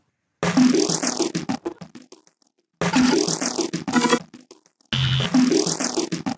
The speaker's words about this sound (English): And step on in that time machine. All the beeps and boops.